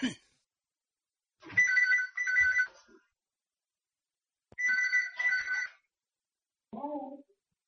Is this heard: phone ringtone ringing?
yes